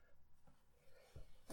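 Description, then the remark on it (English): After a stretch of quiet with faint scratchy rustling, a single sudden, loud sneeze bursts out at the very end. “Bless you.”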